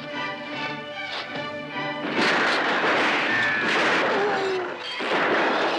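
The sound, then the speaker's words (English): A loud, chaotic burst of gunfire in a shootout with the FBI erupts after about two seconds, dense shots and crashing impacts layered together, following a brief tonal, droning opening. “You're shooting from us. 8,000 panes and you hit one of them.”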